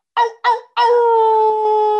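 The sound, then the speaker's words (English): A voice imitates a dog howling: two short rising yelps, then one long, steady, sustained howl, loud, with no other sounds around it. “He'd heard le houlement.”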